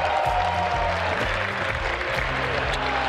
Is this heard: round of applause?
yes